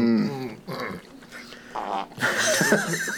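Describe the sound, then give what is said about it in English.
Someone imitates farts with their mouth: a few buzzy, raspy, blubbering bursts of varying pitch over a few seconds, growing louder and noisier toward the end, with no clear words. “That was my mouth. And fake farts.”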